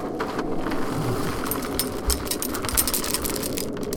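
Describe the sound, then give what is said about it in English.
Dry General Mills cereal (Count Chocula, Frankenberry and Booberry, a little of each) pours steadily into a bowl, a dense, continuous rattle of many small pieces clattering for about four seconds, with no one speaking. “So I'm going to pour these into my bowl here.”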